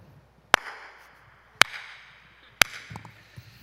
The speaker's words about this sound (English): Jesus goes like slow clap.